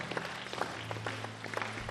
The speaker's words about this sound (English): If you are clapping your hands, please clap your hands well.